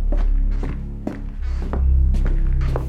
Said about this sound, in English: They were so engrossed in the attempt that they did not hear the approaching footsteps.